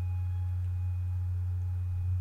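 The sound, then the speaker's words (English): A steady, low-pitched hum sounds from underneath a door, droning on unchanged throughout, smooth and continuous with a faint higher tonal whine riding above it and no other sounds. “Veronica Cleary had only one response, and that was a long, low hum sounding from underneath the door.”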